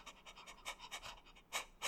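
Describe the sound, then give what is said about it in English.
A dog called Bork, the dog officer, pants quickly and eagerly, a steady run of breathy huffs, with the last two breaths coming louder and harsher. No one speaks. “Ah, the dog officer.”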